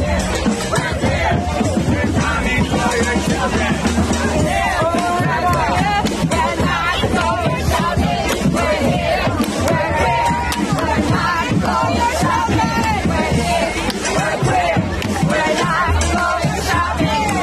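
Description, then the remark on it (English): A large Pride parade crowd yells a chant in unison, "we're here, we're queer, we're coming for your children", loud and continuous, with the voices blurring into a dense roar of shouting and babble that makes the words hard to pick out. “Okay, so what they're saying is, because it's tough to hear, is they're yelling, we're here, we're queer, we're coming for your children.”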